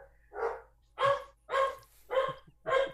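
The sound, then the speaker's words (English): A household's dogs, one Chesapeake Bay Retriever, one chocolate brown retriever and two rescue dogs of uncertain origin, bark in a steady run of five sharp, full-bodied woofs, evenly spaced about half a second apart, loud with no talking. “Dr. Sylvia Earle's dogs, everybody. The time of day, the barking time.”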